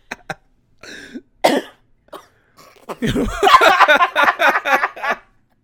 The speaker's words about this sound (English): That was so aggressive. That was such an aggressive cough. Wow. I have to keep that fucking coughing. It was loud.